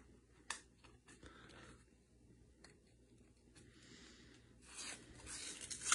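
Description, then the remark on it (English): Paper being peeled off a refrigerated dough can: quiet scratchy tearing and rubbing in uneven bursts, with a few sharp clicks, ending in a louder rip. “I can never get these things open. What is the secret? The paper just always comes off.”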